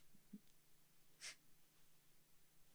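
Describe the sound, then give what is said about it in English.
A single short nose blow by a man wearing a microphone, a quick breathy burst of air through the nostrils, quiet against a faint steady hum, with no one talking. “Terrible when you've got to blow your nose with a mic on.”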